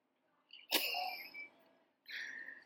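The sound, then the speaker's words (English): A quiet but sharp sneeze bursts out with a hissing tail, then after a short pause comes a second, briefer breathy burst. “Bless you.”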